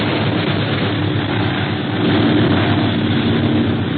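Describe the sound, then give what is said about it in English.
A steady, loud roar of the engines of a plane with 12 motors in flight, a dense droning rumble that fills the whole clip without pause, swelling slightly toward the middle, with no voices. “Gosh, this plane has 12 motors. It's hard to outfly a pursuit plane.”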